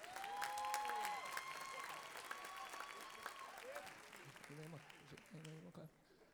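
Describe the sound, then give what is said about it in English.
An audience claps steadily, a dense wash of applause that holds strong for a few seconds and then tapers off, with a voice talking over it toward the end. “Didn't even think you'd clap over that thing, so I think you're going to clap.”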